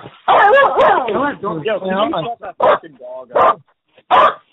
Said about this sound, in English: if you don't get that dog to shut up, I'm going to have it taken away from you.